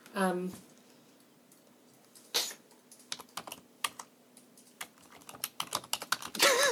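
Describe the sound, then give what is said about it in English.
Clicky mechanical keyboard typing in irregular bursts of sharp keystrokes, fairly loud, with a quiet electrical hum underneath and brief voice sounds at the start and end. “All I can hear is just rumbling mechanical keyboard going...”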